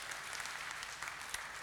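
An audience claps together in a church, a steady, dense patter of many hands filling the room at a moderate level, with no voices over it.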